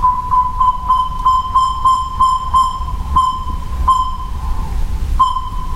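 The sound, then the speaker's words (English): A recorded saw-whet owl call, played very loud at about 110 decibels at an owl migration station in the woods: a loud, mid-pitched toot repeated in a quick, steady series, then a few more spaced-out toots, over a constant low rumble. “The whole idea is that as the owls are migrating through the area, what we do is actually play the call of the saw-whet owl, which is a simple repetitive toot. Sounds like a dump truck backing up.”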